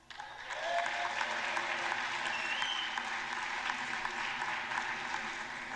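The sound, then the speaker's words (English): A crowd in the US House of Representatives applauds during the vote for Speaker, dense clapping rising quickly after a brief quiet start and holding steady and loud for several seconds, with no speech over it. “Ooh, that sounded like 21 claps.”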